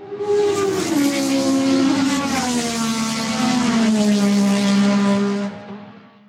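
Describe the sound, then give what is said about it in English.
A woman's voice imitates a race car with a loud, continuous buzzing engine drone that holds steady, then slides gradually lower in pitch before cutting off after about five seconds. “I want to hear a race car.”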